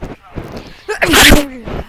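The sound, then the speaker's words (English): A single loud sneeze bursts out midway, a sharp breathy blast with a voiced, drawn-out 'choo' tail, framed by brief quiet vocal sounds before and after. “Bless you. Bless you.”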